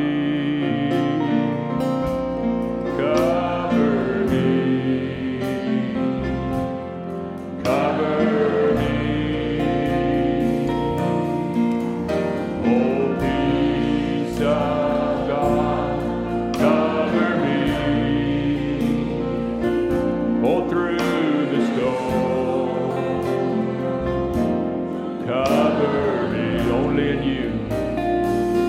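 An audience sings a slow worship chorus praising the Lord together, voices blended over steady instrumental accompaniment, full and continuous throughout with recurring swells every few seconds.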